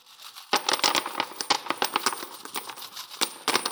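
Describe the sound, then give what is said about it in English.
A steady cascade of coins dropping and clattering as an offering in the temple courts, dozens of sharp metallic clinks tumbling over one another with a bright ringing shimmer, loud and continuous for about three seconds with no voices. “And echoing all throughout the temple courts was this sound.”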